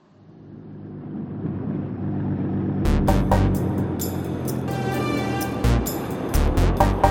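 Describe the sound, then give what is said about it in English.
A truck's heavy engine rumble swells as it approaches and pulls up, then a series of sharp hissing, clanking bursts breaks over the idling low drone. “Truck just pulled up.”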